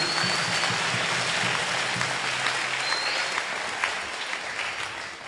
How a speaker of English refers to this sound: If you're happy about that, clap your hands for the Lord.